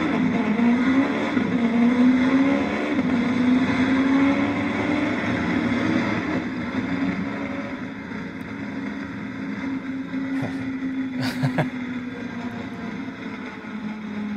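A race car engine roars steadily on track, its pitch rising and easing as it accelerates and shifts, loud throughout with no talking.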